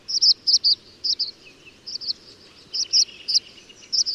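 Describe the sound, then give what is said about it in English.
Tree swallow calls: bright, high-pitched chirps repeated in quick pairs and short clusters, fairly loud over a faint, steady hiss, with no voices. “Tree swallows, however, also eat small fruits, so they can survive for longer periods than other swallow species, which depend on bugs.”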